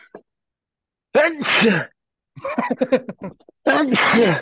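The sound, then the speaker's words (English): Two loud sneezes, each a voiced burst lasting under a second, with a short stretch of muffled talking between them. “if you sneeze five times, you know what's going to happen.”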